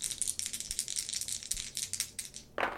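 Dice, an action die and two challenge dice, rattle and clatter in a quick burst of sharp, bright clicks lasting a couple of seconds, ending with a louder tumble as they settle. No one speaks.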